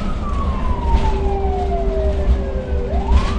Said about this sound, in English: The ambulance I'm in has its lights and siren going, the driver grappling with the early evening traffic, trying to get us to the person in need as fast as possible.